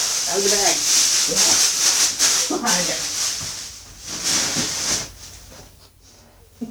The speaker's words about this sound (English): Is that the cat? Hang on. Is that the cat? I think so. Sounds like it. She's rustling something.